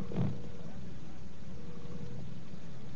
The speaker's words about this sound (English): I'm sitting at an open window in Whitehall. The roar of traffic has dwindled to the few noises that you probably hear because, of course, of the air raid warning. But we still get a few buses passing, a few cars.